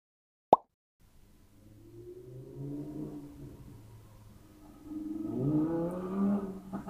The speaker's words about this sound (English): Oh, for fuck's sake. Motorcycle and helicopter, and I haven't even started recording the chapter.